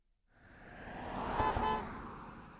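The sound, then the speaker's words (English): A car passes by on a city street, its engine and tire noise swelling to a peak and then easing off, with a faint horn-like tone in the middle of the pass. “I bet you know that sound. A car.”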